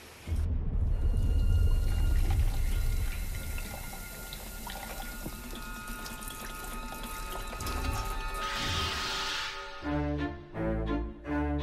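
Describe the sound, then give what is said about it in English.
Dirty formaldehyde pours steadily into a sink in Bong Joon-ho's film The Host, a rushing splash for several seconds, then tapers into a gurgling, bubbling drain near the end. No one speaks. “Mr. Kim, formaldehyde, dirty formaldehyde. Pour him into the sink.”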